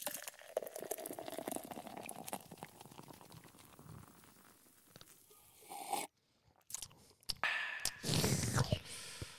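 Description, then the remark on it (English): Baked Pumpkin Ale from Lancaster Brewing Company, 7.5% alcohol, glugs and splashes from a bottle into a glass, a steady fizzing pour that pauses briefly, then resumes with bubbly, crackling foam near the end. “Oh, it's time to pour us a beer.”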